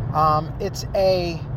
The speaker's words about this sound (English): As usual, I'm in my car. This time I'm on my way to do a delivery. I'm in a rental car.